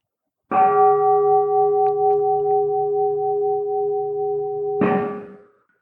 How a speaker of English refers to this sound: And the sound of the big bell calls us to give voice to our Bodhisattva vows.